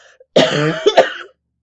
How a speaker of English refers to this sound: All right, coughing up a lung.